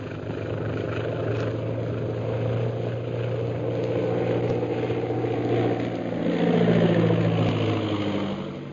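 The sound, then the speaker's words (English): A steady, low droning airplane engine hums continuously, its deep tone holding even before swelling slightly louder near the end, with no voices present. A big silver plane flies overhead, lit by lights from the tower, being guided down by radio. “I'd swear it was a government scout plane on patrol duty.”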